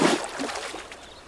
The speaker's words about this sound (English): put some water in your pan with the dirt and start shaking it while you move the water around in a circular motion